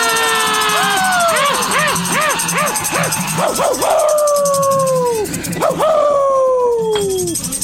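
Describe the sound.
Several voices howl like dogs at the moon in a loud, overlapping chorus, with wavering yips giving way to long, sliding howls that fall in pitch and trail off near the end.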